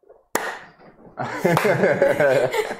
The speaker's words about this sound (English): We haven't done slow clap in a while. Oh, that was so out of sync.